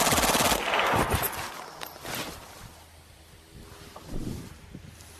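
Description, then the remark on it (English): A Skorpion submachine gun in .32 ACP caliber fires a single rapid full-auto burst lasting about a second, a loud, sharp rattle of shots that cuts off and trails into a low rumble and scattered faint noises. “I know it's only a 32 ACP caliber weapon, but that's some pretty good muzzle control on a weapon with the cyclic rate that the little scorpion does.”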